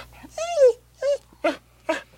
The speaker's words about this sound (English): The dog follows you as you're getting closer, up until you're getting to about the front door, and the dog starts to whimper. And it doesn't seem to want to proceed.